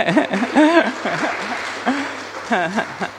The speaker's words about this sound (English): So I think big clap for you